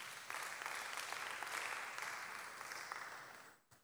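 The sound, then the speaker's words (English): A crowd claps steadily together, a dense wash of many hands applauding at an even level for a few seconds before the clapping quickly dies away at the end. “Pride. Clap for it.”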